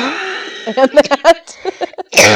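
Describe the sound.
A single sharp cough from a person who still has a cough bursts out at the end, right after a few seconds of muffled, voiced vocal sounds that resemble brief talk.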